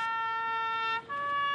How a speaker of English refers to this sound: Air raid sirens blared as the two leaders toured Kyiv.